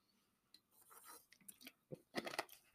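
sipping water

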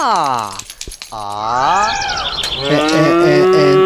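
cows mooing

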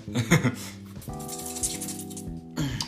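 ice cube clinking

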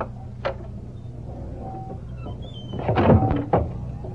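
door opening and closing

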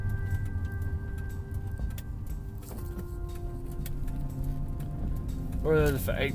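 car engine revving

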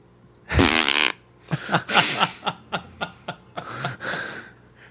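fart

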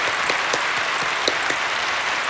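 applause

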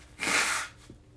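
nose blowing

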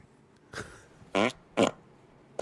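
fart sound

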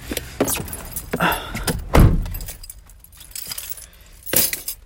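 keys jangling

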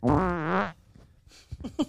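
fart

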